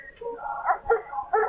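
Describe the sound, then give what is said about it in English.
A dog whimpers in a series of high, wavering whines, fairly soft, rising and falling over a second or two. “Just kill the dog already.”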